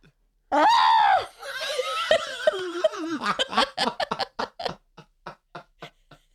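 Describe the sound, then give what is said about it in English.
A person, away from the microphone and into the corner of the room, belts out a loud, strained, bleating scream imitating a murderous goat, then it wobbles and breaks into a run of rhythmic laughter that gradually fades. “Give me your best murderous goat scream.”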